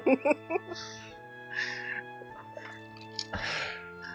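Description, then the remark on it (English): A single sneeze, a sharp breathy burst near the end, over a steady low electrical hum with a few soft clicks and rustles before it. “Bless you.”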